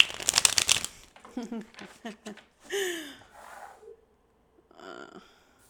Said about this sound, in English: I just like the way the cards shuffle.